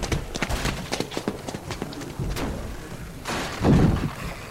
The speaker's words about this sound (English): Where's that one coming from? Lobby door! There's rubble against it, and they're still pounding on it!